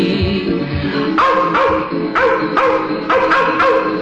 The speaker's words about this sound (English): And they're snarling, yapping, yelping's like a dream. The wild dogs of Kentucky. The wild dogs of Kentucky.